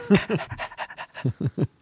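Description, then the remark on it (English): A person's voice imitates a dog panting, with about ten quick, breathy huffs in a steady rhythm. Moderately loud, with no speech over it. “So you're like sitting there like a dog, like, oh, okay.”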